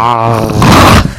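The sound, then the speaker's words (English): A loud, drawn-out yawn right up close to the microphone, starting as a voiced groan and opening into a breathy, rushing exhale before trailing off. “Well, fucking, the way he keeps yawning, man.”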